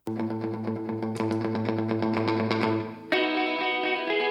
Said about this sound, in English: You can hear them turning on and off pedals. It's kind of cool.